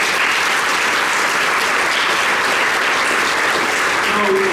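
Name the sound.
audience applauding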